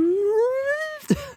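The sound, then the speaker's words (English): A voice imitates the theremin sound in a song's bridge with a single sustained wavering wail that glides slowly upward in pitch for about a second, then breaks off into a brief breathy burst. “There's also the theremin sound that comes in.”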